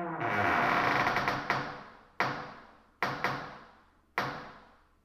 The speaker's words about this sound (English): You walk towards the massive double doors. They give a creak as you open them that echoes along the cavernous alleyways of the Brooklyn Navy Yard.